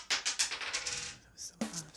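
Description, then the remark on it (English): Dice tumble and clatter across a hard tabletop in a quick run of sharp clicks that slow and fade, ending with one last tap as they settle, landing on a 2. “We're going to roll this dice. Roll that dice.”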